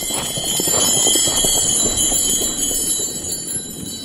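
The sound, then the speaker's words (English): Horse harness bells, fitted on the harness back pad, are moved gently and jingle steadily for a few seconds, a bright continuous shimmer of small bells over soft rustling and shuffling, moderately loud, with no one speaking. “Just move them gently. Let the people hear that sound.”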